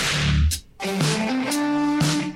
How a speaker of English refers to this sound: I think I say it every week, but every week I just love that little whip crack intro.